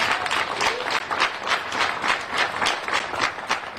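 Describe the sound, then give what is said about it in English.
A crowd applauds the passing of a state Juneteenth holiday bill, the dense clapping rising and falling in loose waves across a broad hiss-like wash, fairly loud and continuous with no voices standing out. “Give that a round of applause.”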